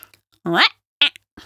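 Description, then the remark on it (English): A person imitates the meow of Eric, a very deaf cat named after Eric Cantona, with a loud, drawn-out rising yowl, then a couple of short, breathy vocal bursts. “He was very deaf towards the end. And his meow was like this.”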